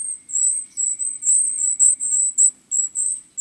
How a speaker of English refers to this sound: These thin, silvery calls coming from the forest belong to a survivor, the golden-crowned kinglet. This bird weighs 6 grams, about the same as 2 pennies, yet they winter as far north as Alaska and Nova Scotia.